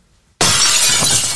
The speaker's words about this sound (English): Oh, the glass breaking? Yeah.